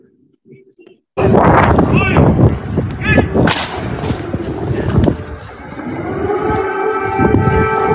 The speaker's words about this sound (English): Right as they walk out, the air sirens go off. Like there's an air raid. Where's the fire?